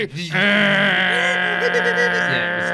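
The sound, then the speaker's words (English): A person vocally imitates a dial-up modem, holding a loud, buzzy, high-pitched screech for a few seconds with warbling, wavering tones layered over a steady drone. “I don't know why I did the modem sound.”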